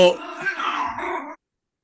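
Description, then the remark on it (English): A dog gives a single drawn-out whining whimper lasting just over a second, moderately loud, then it falls silent. “Whose dog is that?”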